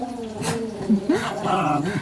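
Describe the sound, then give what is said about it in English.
Dogs whine and whimper with a few short, sharp barks and yips, continuous over a couple of seconds, with people's voices mixed in. “Uh-oh, those are the dogs.”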